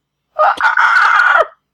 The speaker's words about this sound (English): As you were running along, this path will bring you past the Temple of Pelor, who is the deity of the sun. And you hear from within what appears to be the shattered doorway of the temple a very blood-curdling scream of pain and agony.